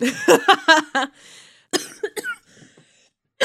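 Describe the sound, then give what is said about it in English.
A burst of several raspy, wet coughs from a cold in quick succession, followed by a pause, a couple more short hacking coughs and a breathy wheeze, fairly loud, with no talking. “cold cough, sick boy cast.”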